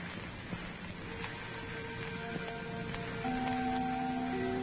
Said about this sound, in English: The little chime clock on the wall chattered, too.